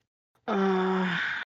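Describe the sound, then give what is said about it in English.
A single loud snore from a person sleeping in a papoose lasts about a second, voiced and groan-like, as if acted out, then stops abruptly into silence. “He's just snoring.”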